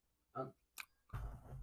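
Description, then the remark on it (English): A single sneeze: a short voiced intake sound followed by a sharp, hissing burst, then a stretch of broad rustling noise. “Bless you.”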